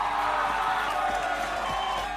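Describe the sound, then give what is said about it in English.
A crowd cheering sound effect plays as a steady, dense wash of many voices and applause, loud and continuous for a couple of seconds with no individual words standing out. “And if I can find my friggin' sounds, here we go. Cheer for you.”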